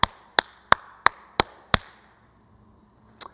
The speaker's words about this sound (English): He stands up, he walks over to him, and he's got this look in his eye like, his eyes say, I'm going to rip your head off. But there's a little bit of a grin on his mouth. He gets right up in his face, clapping like this.